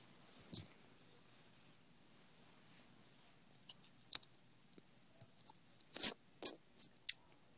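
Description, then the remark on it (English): A cat plays with a worm-on-a-string toy, making quiet, irregular clicks and soft scuffling taps that cluster into quick bursts toward the end, with no talking. “My cat's having an entire seizure over here. Ooh, funny worm on a string.”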